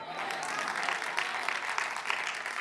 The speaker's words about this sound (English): Golf claps.